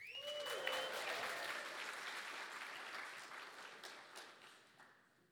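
A crowd breaks into loud, sustained applause for the tech crew with dense clapping, a brief whistle-like cheer rising early on, then the clapping gradually thins and softens toward the end.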